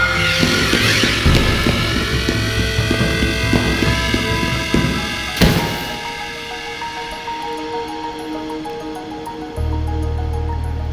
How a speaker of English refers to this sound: Another drone!